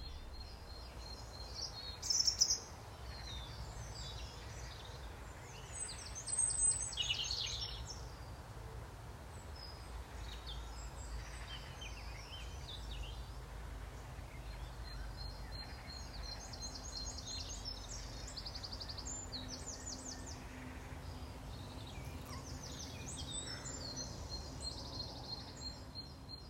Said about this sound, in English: So now it's that time to take a short moment to relax and listen to the bird song I'm lucky enough to hear now from my new garden in the Chilterns. I hope you enjoy it.